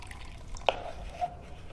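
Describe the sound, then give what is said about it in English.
A single clear water drip as water is emptied from a laser device into a packet, followed by a softer trickle and faint liquid movement against a quiet background, with no one speaking. “The emptying of the water is almost done.”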